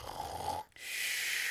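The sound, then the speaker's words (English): A person fakes a snore: a rough, buzzing inhale, a brief pause, then a long hissing breath out. It is a single snore with no talking. “Such a snore.”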